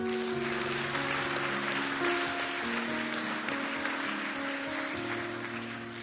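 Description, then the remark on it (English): An audience cheers and applauds for those raising their hands to be positioned in Christ Jesus, a steady, dense wash of clapping that lasts several seconds and eases slightly at the end, with sustained keyboard chords holding underneath. “Let's cheer there for this.”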